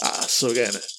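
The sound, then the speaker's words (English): Dice rattle and clatter in a quick burst as a player rolls extra dice, with a voice briefly sounding over the noise midway through. “So she still needs 15, but she is rolling more dice.”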